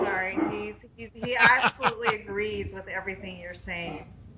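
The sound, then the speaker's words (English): An Akita puppy vocalizes with a run of wavering, talk-like grumbles and whines that rise and fall in pitch, continuing steadily for several seconds. “Wait, you got your dog there?”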